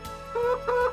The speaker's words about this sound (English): Pigeon.